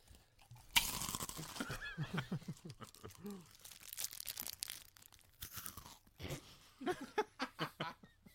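Someone bites into a Violet Crumble honeycomb chocolate bar with a sharp, loud crack, then keeps chewing in a run of brittle, irregular crunches that fade and flare up again toward the end.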